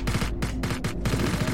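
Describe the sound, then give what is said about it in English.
Sustained gunfire with overlapping bursts of rapid shots, loud and dense throughout, several weapons firing at once in a chaotic exchange as soldiers return fire during an ambush in a city street. “One of my soldiers yelled, "Contact front!" And we started returning fire.”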